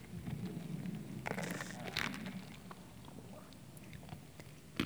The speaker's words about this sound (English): Water break.